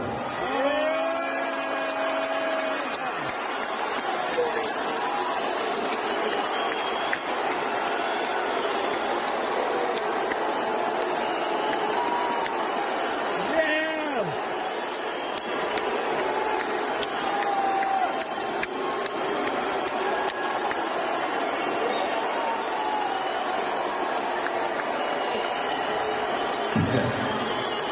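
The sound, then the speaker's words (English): A large indoor crowd in downtown San Francisco roars continuously as Elon Musk walks on stage, a dense wash of booing mixed with cheers and shouts, with a few whistles cutting through. The noise stays loud and sustained throughout, with no clear speech. “Elon Musk has his own gravitational force, and he walked on stage and he had three words for the people who booed him for many minutes on end there in downtown San Francisco.”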